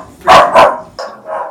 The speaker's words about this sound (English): Right, we've got a little bit of a dog bark going off in the background because there's a DPD man dared to come and deliver to one of our neighbours.